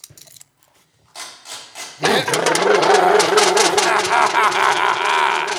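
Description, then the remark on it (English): A motorbike engine sputters faintly, then bursts into a loud, sustained rev, its rough growl wavering up and down in pitch for several seconds. “I have made myself half motor bicycle! Here I come, Grit!”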